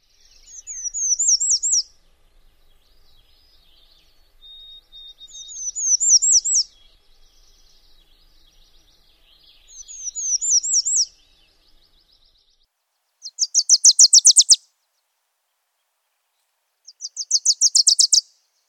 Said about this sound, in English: Wilson's Warbler songs are fairly variable and are possibly linked to distinct subspecies. So one more time, here are a variety of Wilson Warbler songs.